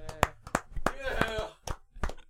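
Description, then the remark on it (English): A few people clap in a brief, loose burst of scattered sharp claps, with a voice calling out over them partway through. “Hats off to applause.”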